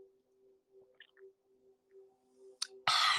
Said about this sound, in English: excuse me, pardon me one second while I sip my water.